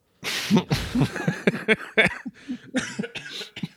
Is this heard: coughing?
yes